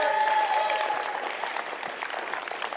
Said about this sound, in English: Y'all give it up for my son. He's about to help me real quick. Can y'all clap for my son,